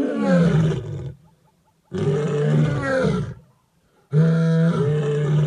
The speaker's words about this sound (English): And people pay tens of thousands of dollars to go to Africa and actually see it. See a pride of lions roar.